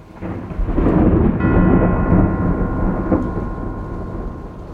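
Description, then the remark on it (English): Several heavy peals of distant thunder, a deep sustained rumble that swells over the first second, stays loud and churning, and slowly fades without fully dying away, heard half an hour after the drop fell at an execution watched by a large crowd. No voices. “Half an hour after the drop fell, several heavy peals of distant thunder were heard.”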